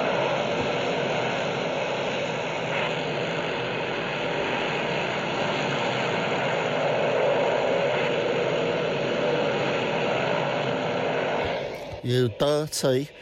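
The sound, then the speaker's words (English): A powerful motorbike engine, ridden off with a girlfriend on the back, roars steadily and loudly for several seconds, a continuous rumbling drone, then cuts away as a voice briefly speaks at the end. “With a fine weekend, a powerful motorbike, and a girlfriend on the back, the Ton Up Boys set off.”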